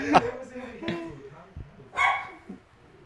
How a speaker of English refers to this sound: just watching the fucking dog go crazy.